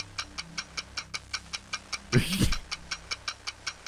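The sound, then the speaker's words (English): A 60-second game timer ticks steadily, sharp clicks arriving about four times a second. About halfway through, a brief louder burst of noise rises over the ticking before the steady pattern resumes. “60 seconds are on the clock. Let's begin.”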